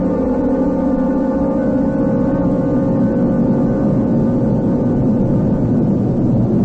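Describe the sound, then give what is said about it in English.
A stolen gray four-door sedan drives through city streets with a steady, continuous engine drone, a low rumbling hum that stays even and fairly loud throughout, with no voices. “The kidnappers of Curtis Alexander Arnold have abandoned the limousine and transferred themselves and their prisoner into this car, which was stolen from a Mrs. Beulah Bernalet as she double-parked briefly.”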